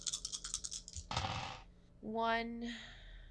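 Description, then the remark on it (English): Dice rattle in a rapid series of clicks, then tumble and clatter across a table. A voice follows briefly afterward. “Oh, this has to be a blood dice too, doesn't it?”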